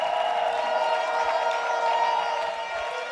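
An audience claps and cheers for Jesus Christ and to welcome the Bishop, a dense, continuous roar that stays steady and loud for about three seconds, easing off only slightly at the end.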